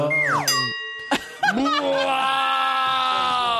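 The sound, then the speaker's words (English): A voice imitates a sultry wolf whistle, first sliding downward in pitch, then rising in a couple of quick swoops before holding a long, wavering, nasal tone. Loud and alone, with no other talk. “That was supposed to be like the sexier whistling sound.”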